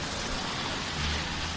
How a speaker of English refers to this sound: I don't know, what is it, like a storm. This is crazy. Of all the days, it wants to be a tornado and rain.